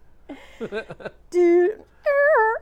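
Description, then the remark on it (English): A small dog named Riley gives a little howl: a quick run of choppy, whiny yips, then two sustained high-pitched tonal notes, the second wobbling up and down in pitch. No one talks. “This little dog named Riley made a sound, like a little howl sound.”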